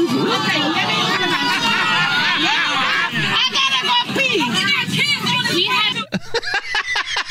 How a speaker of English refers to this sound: I love the audible gasp of the... I mean, you can hear the entire plane go, oh!